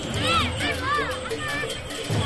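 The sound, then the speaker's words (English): A festival crowd at the Dong Du Ping Buddhist monastery murmurs steadily, many overlapping voices blending into a continuous babble, with a few higher, sing-song voices rising and falling above the hubbub. “On our last day, we pass a Buddhist monastery called Dong Du Ping. There's a festival going on.”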